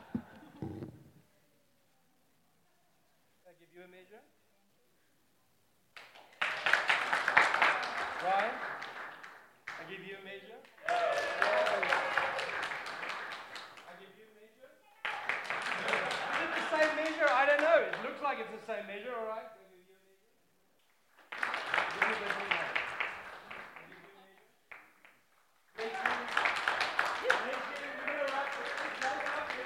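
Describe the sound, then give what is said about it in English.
Five loud bursts of applause mixed with cheering voices, a round of applause given each time participants go by in an interactive exercise, each lasting a few seconds and separated by brief quiet gaps, swelling and fading in turn. “And then we just give them a round of applause every time they go by.”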